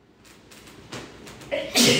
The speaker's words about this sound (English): Bless you.